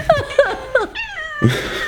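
A cat meows loudly and insistently, a quick run of three short yowls followed by a longer drawn-out wail, with no talking over it.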